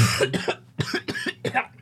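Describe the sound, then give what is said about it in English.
A man coughs as the character Cav in a quick series of about four or five harsh, raspy bursts, fairly loud, with brief gaps between them and no talking. “Cav coughs a bit.”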